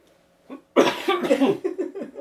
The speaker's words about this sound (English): You made him cough.